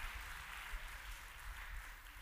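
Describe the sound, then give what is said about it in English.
Women in a crowd clap their hands together in a steady, dense wash of applause that carries on without a break, giving God praise. “Let all the women clap their hands and give God praise.”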